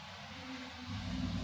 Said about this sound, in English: It's all the construction. It's all construction cars and trucks and stuff.